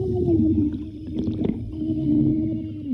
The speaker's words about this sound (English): So I thought, hey, my phone is waterproof. I put it in a zip tie bag just in case and pressed record on a sound recorder app. dunked it in the water and submerged my face in the sink and screamed.